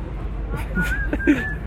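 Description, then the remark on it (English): A person whistles a thin, steady tone that breaks into a few short held notes, over low murmuring voices and background hum. “Can you whistle over there?”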